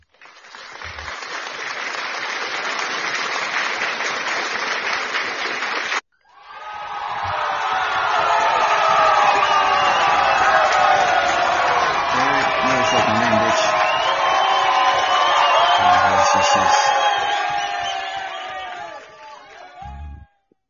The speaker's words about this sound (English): Everyone, let's give a big round of applause